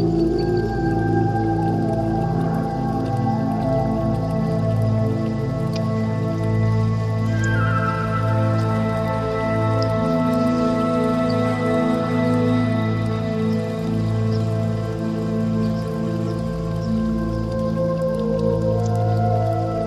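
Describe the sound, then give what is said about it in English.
Droplet-like water sounds patter over sustained, layered musical tones that hold steady at an even level for the whole stretch, with no voices present. “Sucker for water in any track.”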